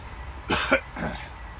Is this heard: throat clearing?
yes